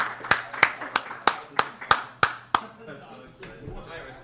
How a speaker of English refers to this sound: I'm sure people love it when you clap in the mic.